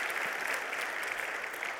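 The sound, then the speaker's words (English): A crowd claps steadily in a dense, continuous wash of applause, a round of applause given to God, that holds an even loudness from start to finish, with no voices rising above it. “God has been faithful, and if God has been faithful to you, would you please give him a round of applause, because he is so good.”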